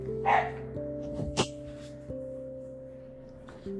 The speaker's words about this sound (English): You're probably going to hear my dog barking. Now he's barking at someone outside. I'm sorry, but I'll try to, let me actually shut this door a little bit more so you guys don't have to hear that.